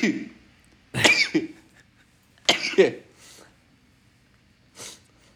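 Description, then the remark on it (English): Three sharp sneezes in a row, fairly loud, spaced a second or two apart with quiet breaths between; the last one is shorter and softer than the first two. “I'm going to start talking, but I'm going to sneeze. Here it comes.”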